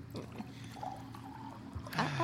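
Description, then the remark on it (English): Wine glugs and trickles as it's poured from a jug during an evening at home, a steady liquid stream that swells louder toward the end. “Now then, more wine, darling. When the love of my life is pouring, how could I say no?”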